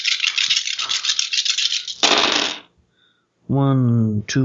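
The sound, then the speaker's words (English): A handful of dice rattles and clatters for about two seconds, then tumbles out onto a table in a short burst. A brief pause follows, and a voice hums or speaks briefly. “Okay, it's resisted by a ballistic, so good, he does get that many dice.”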